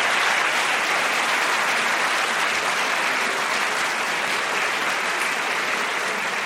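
A sustained round of applause from a large debate audience for both debating sides, dense steady clapping that stays loud and even for the whole stretch with no voices standing out.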